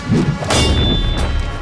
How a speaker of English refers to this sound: Sha Wu Jin swung a mighty blow at the back of the demon's head. The demon raised his hammer to block it, but the force of Wu Jin's staff still sent the demon careening towards the shore, where Monkey and Jin Yu sat.